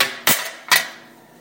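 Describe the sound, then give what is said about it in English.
Freshly baked, crispy kale chips, just pulled from the oven and done, rattle on a shaken cookie sheet in two sharp, bright metallic clatters about half a second apart, each leaving a faint ringing tail that fades away. No one speaks. “This time when I shake the cookie sheet, you can hear them moving around on it.”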